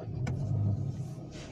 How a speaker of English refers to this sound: I know y'all probably hear me starting up my car. I'm gonna go ahead and get up out of here.